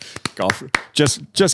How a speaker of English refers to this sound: Just golf claps